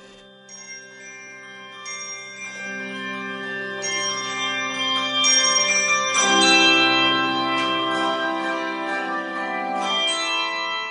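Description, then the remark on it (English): The Isle Bells, Kodiak's handbell choir, rings a melody at its fall practice, bright overlapping tones striking in steady succession and sustaining into a shimmering wash, moderately loud with no talking. “Kodiak's handbell choir, the Isle Bells, is about to begin their fall practice.”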